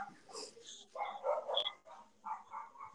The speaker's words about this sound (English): And now my dogs are barking.